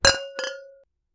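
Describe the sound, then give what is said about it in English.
Two quick clinks of wine glasses touching in a toast during a wine tasting, fairly loud, the second a moment after the first, with a clear bright ring that fades out in under a second. “Let's go ahead and cheers. Let's enjoy these wines.”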